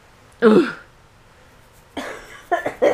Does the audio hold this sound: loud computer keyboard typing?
no